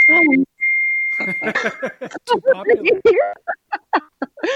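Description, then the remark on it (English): A steady electronic tone rings out, followed by a quick run of short chirps and blips like computer message notifications, mixed with voice-like sounds, all fairly loud. “There's like a box that you can check for play sound effects.”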